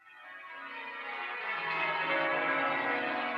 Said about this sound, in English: No, those are like really church bells. Well, yeah, they are church bells.